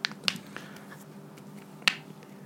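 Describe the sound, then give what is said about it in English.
A few sharp knuckle cracks pop out of a quiet background: two quick snaps near the start, a faint one after, and a final louder crack after a pause. No talking. “Oh, that knuckle crack sounded satisfying.”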